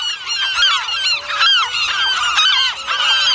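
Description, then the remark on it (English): A loud, dense chorus of shrieking gulls swirling overhead at night on Año Nuevo Island, diving down, many harsh overlapping cries sounding continuously, with no talking. “Thick, angry shadows of gulls swirl above, diving down to peck at my head.”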